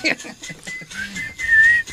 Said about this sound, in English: No, the first one I did because I was thinking of a guy whistling and, you know, like walking slowly down an alley.